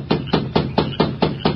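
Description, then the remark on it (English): A masked man raps seven firm, evenly spaced knocks on the wooden door of a lighted bunkhouse in a quick steady rhythm, each a loud hollow thud with no voices. “Then, with Dobbs close by, he rapped on the door.”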